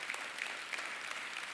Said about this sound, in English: Well, welcome everyone. You can clap for that. Go ahead. You don't have to be shy.